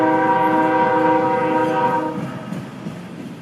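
A steam train's horn blares loudly for about two seconds over a rumbling engine, then cuts off, leaving the rolling clatter of the passing train fading slightly.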